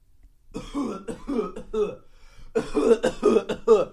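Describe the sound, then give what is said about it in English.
A voice imitates a man coughing over and over during a film in a cinema, a series of harsh, throaty bursts that start in short separate hacks and grow into a louder, more continuous fit near the end. “Someone coughing up their lungs.”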